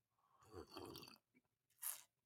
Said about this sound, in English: So based on all of this data, let me get another sip of this coffee.